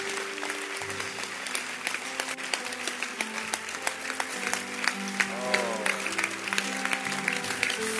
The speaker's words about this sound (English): Don't stop clapping. Thank you, Jesus. Thank you. Online, Jesus. Don't stop clapping.